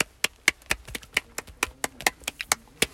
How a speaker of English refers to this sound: Got mostly B's in all my classes. Round of applause.